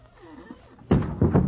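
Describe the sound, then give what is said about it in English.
After a quiet moment, a heavy wooden door with no hinges falls with a sudden loud, low thud, followed by a second rumbling knock as it settles. “I neglected to notice that there were no hinges.”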